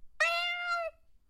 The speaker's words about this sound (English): Because they're fucking cats. Wait a minute, they're cats.